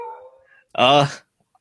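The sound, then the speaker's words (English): A household dog gives one loud, drawn-out bark lasting about half a second, preceded by a fainter tonal sound, then silence. “That's my dog barking in the background.”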